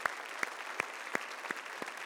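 A church audience applauds the news that the Orange church started two services, a steady wash of clapping with a few sharper individual claps popping out at a loose, regular beat. No one speaks over it.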